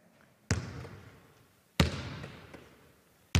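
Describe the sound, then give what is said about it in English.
A basketball bounces on a hard floor three times in a steady rhythm, each bounce a sharp, resonant thump that fades with a short reverberant ring. No voices are present. “So there it is. That's a basketball.”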